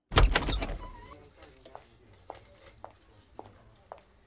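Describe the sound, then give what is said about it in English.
A door opens with a loud clunk and rattle, then fades into quieter sounds with a few soft, evenly spaced taps, like footsteps. “Leave the door open when you leave.”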